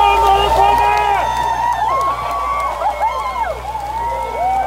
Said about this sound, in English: And people are clapping in Richmond, Virginia, too, because the grand statue of General Stonewall Jackson also came down.